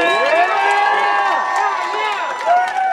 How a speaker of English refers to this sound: Thank you for being here. Can I just get one more round of applause for 1,600 miles of bike paths?